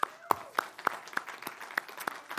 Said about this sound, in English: God is a good God, amen? Come on, let's give the Lord a hand clap.